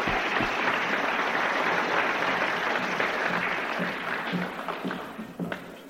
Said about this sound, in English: Give her a clap.